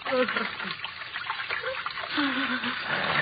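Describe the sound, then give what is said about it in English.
Water rushes strongly through a large sewer channel, a continuous loud, hissing flow filling the whole stretch, with a faint voice murmuring briefly underneath. “The water runs quite strongly here, doesn't it? Huh? The largest sewer of them all.”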